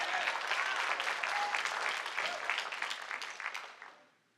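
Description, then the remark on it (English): A church audience, answering a preacher's call for praise, claps in a dense, sustained burst of applause, steady and loud for several seconds before tapering off at the end, with a few faint voices mixed in. “I want to hear a praise God, a clap, a shout.”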